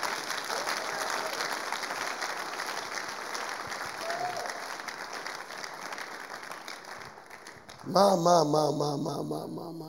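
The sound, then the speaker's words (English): A large group claps for Jesus in a dense, sustained patter of applause for about eight seconds, then a loud voice breaks in over the fading clapping. “Oh, those who are clapping for Jesus, you are getting it.”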